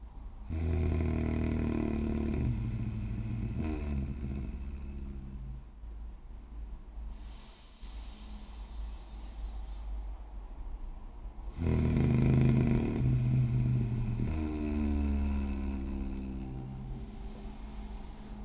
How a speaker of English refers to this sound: Keep breathing in, breathe in new energy. When you breathe out with a growl, it cleanses you of all the negative and old energy that's within you.